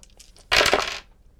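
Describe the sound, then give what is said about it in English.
A few faint clicks, then a fairly loud half-second clatter of advantage dice tumbling across a hard tabletop before settling. No one speaks. “I'm gonna grab my advantage dice here because she's good at this thing.”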